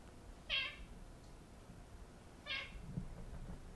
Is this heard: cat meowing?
yes